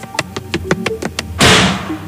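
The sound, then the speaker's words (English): A hand presses against a door: a run of six or seven quick, evenly spaced taps, then a louder rushing, rattling burst as the door is shoved, fading out. No voices. “I'm glad to see you've got the spring back in your step, but please take your hand off of the door.”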